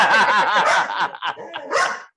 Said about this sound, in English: He hears a dog from outside barking, and so he feels that it's okay to bark.